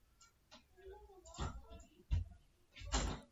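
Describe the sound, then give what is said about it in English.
A young girl slams on a locked door, a few dull, muffled bangs, irregular and spaced apart, fairly quiet, with faint indistinct voices murmuring between the knocks. “my little sister was slamming on the door because she was like, "Why is he locked in there?"”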